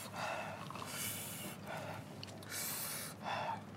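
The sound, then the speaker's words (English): Heavy, rapid panting from a person whose mouth burns after eating a very spicy chip, a steady run of loud breathy huffs alternating in and out, with no one speaking. “That's the only thing that's helping me right now is breathing onto my Sorry phone.”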